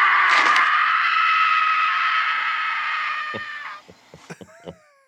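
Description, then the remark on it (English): In a recording, a child lets out a long, loud, high-pitched scream held steadily for about four seconds before it trails off, followed by a handful of short clicks and knocks. “How could you hear your child scream in that manner and just be like, eh?”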